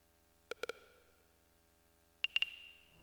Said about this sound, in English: And then we added those little cricket clicks. I forgot about that. Oh right, which we added after the initial drum track. And that was just a synth click sound that I had that I put a little delay on.